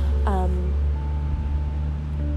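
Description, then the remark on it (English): A dump truck rumbles past with a deep, steady engine drone that fills the whole clip, loud, while a brief vocal sound briefly rises above it near the start. “And excuse me, there's a dump truck driving by.”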